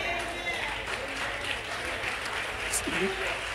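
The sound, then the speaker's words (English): An audience claps in a steady, scattered patter of many hands, moderately loud and continuous throughout, with a brief voice rising over the applause near the end. “do you notice how people are just really slow to clap?”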